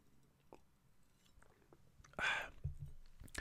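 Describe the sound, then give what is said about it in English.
Someone takes a sip of water: soft wet mouth clicks, then a brief louder slurp followed by a low gulp as they swallow, with no talking. “And also one thing, hang on, let me just take a sip of water actually while we're on the topic.”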